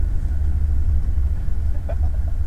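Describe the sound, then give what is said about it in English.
A car engine idles while stuck, not moving, in traffic on the Beltline, a steady low rumble that holds throughout, with a few faint, brief higher chirps near the end and no talking. “We're sitting in traffic on the Beltline. Not moving.”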